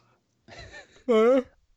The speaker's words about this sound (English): Yes, I will jump in for that very unprofessional yawn.